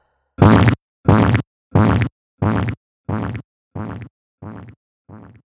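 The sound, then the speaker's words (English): Eight short, buzzy human fart noises recorded into a microphone for a song, evenly spaced in a steady rhythm, each one a little quieter and duller than the one before, with silence between them and no voices. “we have a song that was literally created from someone farting into a microphone.”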